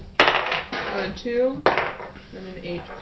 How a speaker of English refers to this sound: Roll another D6 and then a D20.